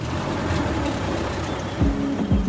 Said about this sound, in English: So we hop in his antique truck, a 1964 Dodge Power Wagon, classic and indestructible.